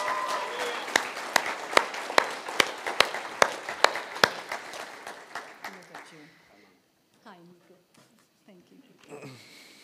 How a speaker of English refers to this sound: Así que dele un fuerte aplauso a Jesús. So give a great clap for Jesus.